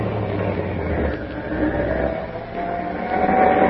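A truck engine rumbles steadily as the truck drives into the East Shore Freight Yards, a continuous low drone with a slight rise in revs toward the end and no voices.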